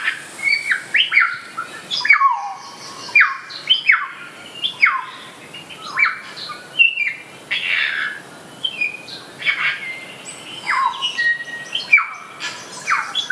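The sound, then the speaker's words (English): A noisy run of harsh, screechy kaka parrot calls mixed with sharp whistles and chattering squawks, repeated rapidly, with no voices over them. “the kaka, which is the parrot you were just talking about, quite noisy, aren't they?”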